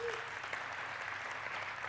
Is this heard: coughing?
no